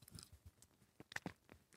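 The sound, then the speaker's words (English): Soft wet chewing of a jelly bean, eaten with the nose held closed, with several irregular squishy bites and smacks in quick succession, no talking. “Put the jelly bean in your mouth, chew it and swallow it, keeping your nose closed.”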